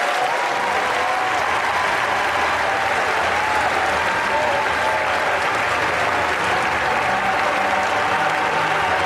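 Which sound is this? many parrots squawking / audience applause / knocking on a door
audience applause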